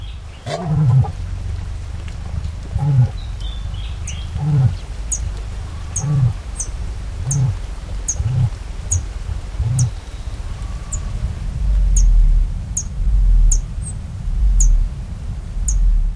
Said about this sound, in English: To capture that breath, we've composed two unlikely duets from species that never sing together in the wild. First, a cassowary of Australia and a Brazilian hummingbird, the Black Jacobin.